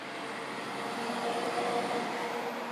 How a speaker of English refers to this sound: Hold up, a truck coming.